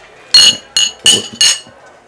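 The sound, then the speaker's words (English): Four loud martini glasses, holding bone-dry martinis made with Navy Strength Plymouth Gin, clinking together in a toast right over the microphone. Each bright ringing tap quickly fades, spaced in a quick, slightly uneven rhythm with no talking. “Cheers. That was loud up in here.”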